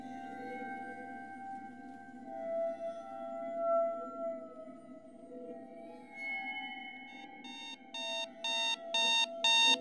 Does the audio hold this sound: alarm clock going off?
yes